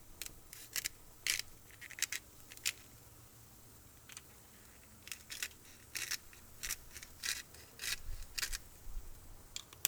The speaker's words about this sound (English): I've got the grill up to 500 degrees, and like I said, the very first thing I'm going to do is place the onions on the grill. I don't know if you hear the sizzle a little bit. A little sizzle. And I'm gonna hit it with some salt.